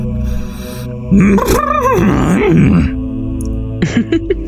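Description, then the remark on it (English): A person imitates a horse with a drawn-out, wavering vocal whinny that rises and falls in pitch for about two seconds, followed by a few short voiced sounds. “That sounded like a horse.”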